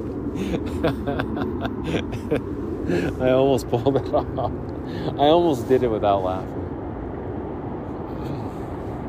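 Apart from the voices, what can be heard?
airplane flying overhead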